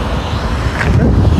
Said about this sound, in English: It's windy out here. It's snowing. It's a snow and rain.